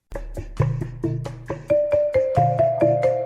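A tinkling music-box lullaby rendition of a pop tune, plucked chime notes stepping along at a steady, gentle pace with soft low tones beneath, clear with no voices.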